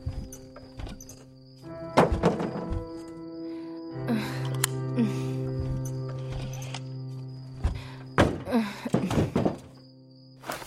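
The door of an overturned car is yanked open after a crash in a forest, with a heavy thunk and rattle, followed by a few more sharp knocks and scrapes, all over a steady low droning hum.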